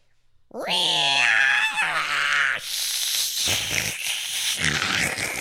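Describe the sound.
A person loudly imitates a cat with one long, wavering meow, then shifts into a rough, breathy growl that could pass for a mock bark.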